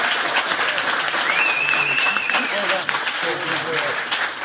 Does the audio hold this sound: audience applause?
yes